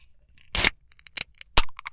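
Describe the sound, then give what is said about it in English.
A beer being opened: a loud, sharp burst of fizzing hiss, followed by a few brief clicks and a second short crack. No one speaks. “Well, I just get my beer, excuse me.”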